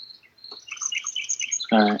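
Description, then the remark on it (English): Several birds chirp busily and loudly, their high tweets overlapping, before a harsher, buzzy call cuts in at the very end. No one is talking. “Sorry, these birds are really loud, dude.”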